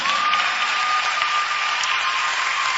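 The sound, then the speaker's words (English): A crowd claps for Jesus, dense overlapping claps forming a loud, continuous wash of sound with no voices standing out, along with a faint sustained tone running underneath. “Clap for Jesus.”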